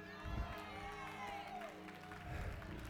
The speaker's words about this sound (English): Y'all clapping, but I don't know if y'all going to enjoy it.